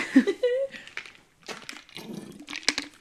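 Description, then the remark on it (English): Someone sips a chocolate caramel brownie Shakeology protein shake: short wet slurping and gulping noises with a brief hummed murmur of approval, followed by a few more scattered sipping sounds at moderate loudness. “All right, we are sipping on chocolate caramel brownie Shakeology today.”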